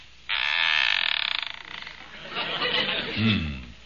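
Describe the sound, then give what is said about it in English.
A gate swings open with a loud, rasping squeak from its hinges, a long grinding creak that wavers and trails off as a voice briefly sounds near the end. “I ain't heard nothing squeak like that since they was putting Grandpa in the box.”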